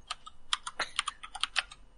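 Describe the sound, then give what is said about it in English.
Rapid, irregular clicking of keys on a computer keyboard, a dense flurry of sharp taps over two seconds, moderately loud, with no voices. “I'm gonna wait till Harley stops seriously. Typing.”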